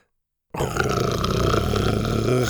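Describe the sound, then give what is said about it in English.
After a brief silence, a loud dinosaur growl from Buck erupts and holds for about two seconds, deep, rough and rumbling with a steady snarling texture before cutting off. “Buck growled at him.”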